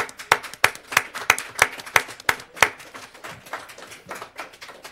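A round of applause for Member Scott Benson: sharp, steady hand claps ring out in a quick even rhythm, then blend into softer, scattered clapping from several people that tapers off. No one speaks.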